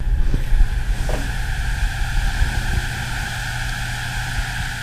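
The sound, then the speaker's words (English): A steady, high-pitched whine of mosquitoes flying around, not right next to the ear, several thin tones droning together without pause over a low background rumble and hiss. “Yep, that's the sound of them flying around when they're not right next to your ear.”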